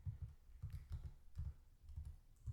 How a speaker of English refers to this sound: Oh, you're typing something in the computer.